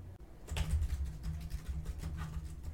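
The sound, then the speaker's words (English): Rapid, steady typing on a computer keyboard fills the whole stretch, a dense run of clicks and taps with a low hum underneath and no voices. “I haven't woken up from your typing since you forgot to finish your term paper last year.”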